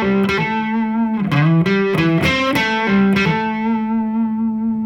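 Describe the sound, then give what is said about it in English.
A distorted electric guitar plays a short phrase of quick slurred notes: a pull-off from the 7th to the 5th fret and hammer-ons shifting pitch. It then settles into a sustained ringing note that slowly fades. No one speaks. “You can pull off that 7-5 and then strike your 7, or a little hammer.”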